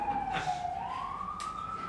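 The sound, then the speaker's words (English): An emergency vehicle siren passing by in a city wails with a single sustained tone that dips and then slowly climbs in pitch, over a low, steady background rumble. “Don't worry about sirens. It happens.”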